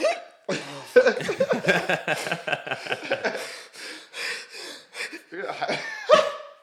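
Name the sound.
hiccups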